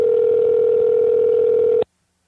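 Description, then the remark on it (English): A phone line ringing on an outgoing call to the costume shop Halloween Town Costumes: one steady electronic tone holds loud and unbroken for about two seconds, then cuts off abruptly into silence. No voices. “Ring-a-ding-ding. Come on.”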